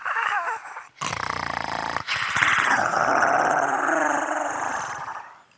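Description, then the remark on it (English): Low, menacing dog growls come from both ends of an alley, rumbling continuously for several seconds, loud, with snarling swells and a brief break before a deeper, sustained growl. “And from both ends of the alley come low, menacing, animalistic growls.”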